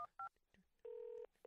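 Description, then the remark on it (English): Telephone keypad dialing tones as someone places a phone call: two quick electronic beeps, then a longer held tone and the start of another, loud, with no talking. “I'm actually going to call him, if you don't mind.”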